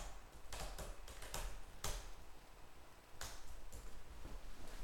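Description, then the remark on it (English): Quick, irregular clicks of someone typing on a computer keyboard, a burst of keystrokes with brief pauses, fairly quiet over a faint background hiss, with no talking. “can you hear my typing? Listen.”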